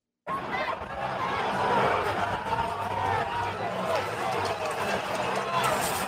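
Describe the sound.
A dense crowd of thousands overwhelming police roars and shouts continuously, many overlapping voices forming a loud, chaotic wall of noise with scattered yells and some laughter rising above it.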